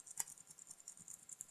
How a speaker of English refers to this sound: Let's leave in all the uhs. You can listen to me clean this keyboard.